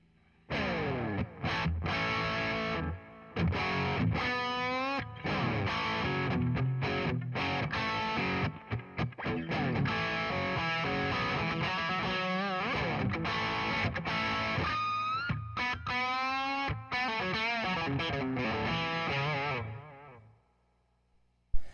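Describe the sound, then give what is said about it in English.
An electric guitar with a lower-output pickup plays a lively riff through an amp set with little drive or distortion, with clean-ish, slightly crunchy tone, quick note runs and chords for about twenty seconds, no voices. “We'll hear what a lower output pickup does to the amp, because I don't use a lot of drive on my amp, not a whole lot of distortion.”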